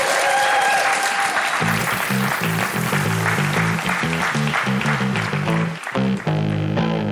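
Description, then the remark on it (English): Loud, sustained audience applause and cheering for the act Police Cops fills the whole stretch, while a bouncy, rhythmic bass-heavy tune starts up underneath after a couple of seconds and plays on beneath the clapping. “Can we have a warm round of applause, ladies and gentlemen, for Police Cops?”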